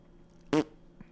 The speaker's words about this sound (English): That was a real fart. I just did it into the microphone.